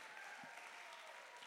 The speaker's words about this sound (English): Let's clap our hands to a God that still loves us.